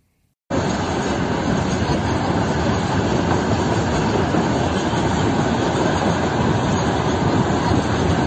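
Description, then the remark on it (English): A freight train carrying a large number of MLRS rocket launchers rolls past on the rails, a loud, dense and steady rumble with faint rattling that cuts in abruptly after a moment of silence and continues unbroken. “It is a massive amount of MLRS is being shipped by train”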